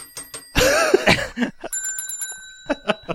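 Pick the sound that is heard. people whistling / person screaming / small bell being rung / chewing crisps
small bell being rung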